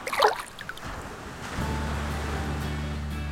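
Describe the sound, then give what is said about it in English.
A short burst of gentle splashing as feet are dipped into ocean water, followed by a steady wash of moving water with a low, continuous rumble underneath. No one speaks. “Why don't you dip your feet in the water?”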